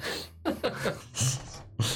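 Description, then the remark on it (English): A voice imitates a dad's loud snore: a few rough, throaty bursts in quick succession, fairly loud, with brief breathy pauses between them. “It's that dad snore.”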